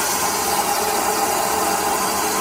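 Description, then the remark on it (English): A Type 3 aircraft vacuum toilet flushing: a loud, steady rushing roar of suction with a bright hiss and a faint mechanical hum, holding at constant strength with no voices. “It says 5256 Type 3 Unknown Vacuum Aircraft Toilet 2.”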